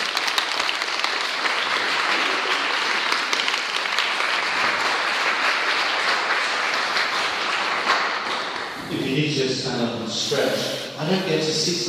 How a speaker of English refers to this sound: Thank you very much for keeping your thinking hats on for an hour there. Wonderful. Thank you. Shall I just give you a massive round of applause?